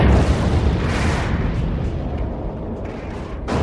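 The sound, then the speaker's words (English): A massive explosion from a science fiction movie roars continuously, a loud, dense blast of deep rumble and crackling debris that stays heavy throughout and swells again at the very end, with no voices. “Now we start as the music ends, the music drops out, there's a beat of silence, and then there is one of the biggest explosions I had ever seen in any science fiction movie up to this point.”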